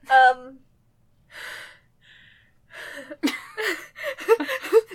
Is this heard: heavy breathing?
yes